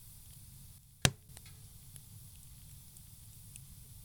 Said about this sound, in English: The microphone hasn't yet been invented to effectively record nature's most elementary sounds. Wind. Rain. Fire.